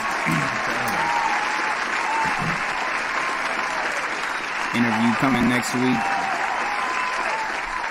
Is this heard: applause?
yes